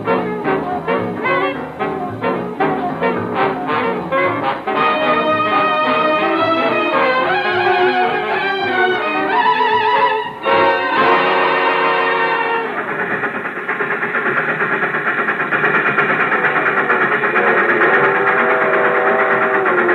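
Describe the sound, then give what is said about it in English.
A train rolls steadily along through the night, its rhythmic clatter blending with sustained, whistle-like tones. The sound is loud and continuous throughout, with no voices. “The train moved on into the night.”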